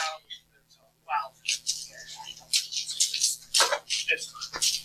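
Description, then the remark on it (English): Irregular clicks and clatters of dice being rummaged and scooped out of a box, with bursts of rattling between brief pauses, and faint voices in the background. “I'll just grab them out of. No, we have a box.”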